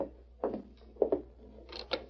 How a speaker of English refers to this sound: He's dismounted. I'll open the door.